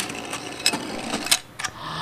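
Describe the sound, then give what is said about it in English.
A short mechanical whirring sweep from the swinging lens of a Noblex panoramic swing-lens camera taking 120 roll film during an exposure, with a few sharp clicks and ticks punctuating a steady buzzing rattle, ending in a brief clack. “Now ready for the exposure? Yep. Lens swings.”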